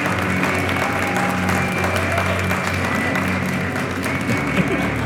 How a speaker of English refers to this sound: Please give a special round of applause to our community guest star this evening, Diane Magnone.